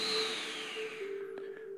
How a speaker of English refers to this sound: Let's breathe in now through the nose if you can, through the mouth if necessary.